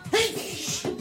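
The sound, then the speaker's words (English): A sudden sneeze bursts out, a sharp breathy blast followed moments later by a second, smaller puff of breath. “Bless you.”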